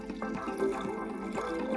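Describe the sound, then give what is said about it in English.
Sangria poured steadily into a glass, a continuous splashing gurgle with a rising fill tone, no voices. “Let's pour me a generous glass.”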